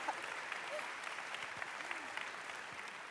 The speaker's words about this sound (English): oh, yeah, great hand applause.